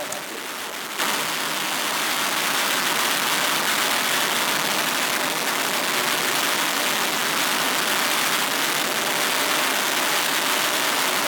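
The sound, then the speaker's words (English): A race car engine roars loudly and steadily, a dense, continuous wall of noise that holds without a break for the whole stretch, with no voices. “And you've also got somebody there with a full-rated set of headphones there that's putting his hands over the top of his ears because it's so noisy.”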